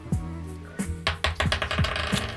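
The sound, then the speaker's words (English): Dice clatter and tumble across a hard table, a burst of sharp, irregular clicks that bounce several times before settling, with no voices over them. “Okay, let's roll.”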